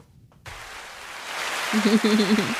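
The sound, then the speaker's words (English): A canned applause sound effect bursts in abruptly as a dense, steady hiss of clapping that sounds much like rainfall, swelling slightly louder, with brief voice-like tones near the end. “I got to get a new applause button because that sounds like rainfall.”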